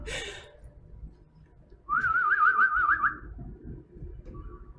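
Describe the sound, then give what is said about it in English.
A person whistles a wavering, warbling tune in imitation of a bird call, lasting just over a second, clear against a quiet background. “I can't whistle.”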